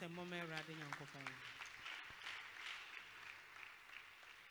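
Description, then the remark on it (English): A large crowd claps for God, steadily and densely for several seconds, the applause swelling in after a brief raised voice at the start and continuing as a sustained wash of hands. “Clap for God.”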